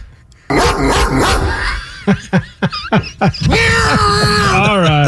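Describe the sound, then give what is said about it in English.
A man's voice mimics a dog, letting out a quick run of sharp, barky yelps followed by a drawn-out, loud howling moan. “We need more dogs.”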